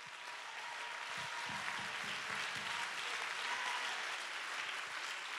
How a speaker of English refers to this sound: Somebody clap your hands and give him real praise. Give him some praise that costs you something.